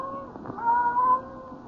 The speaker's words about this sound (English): Then the silence was broken by the faint crying of one cat.